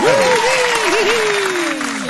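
A burst of dense, steady applause from a group welcoming a special guest on a show, sustained for a couple of seconds, with a voice calling out over the clapping.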